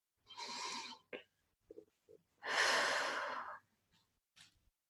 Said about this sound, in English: Take a deep breath in, expanding the belly out.